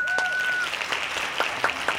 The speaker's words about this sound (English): Hand claps.